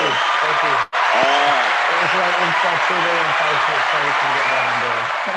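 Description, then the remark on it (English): A large crowd claps steadily for several seconds, a dense, continuous roar of hands with voices mixed in, broken only by a brief dropout near the start. “That's a lot of people clapping hands.”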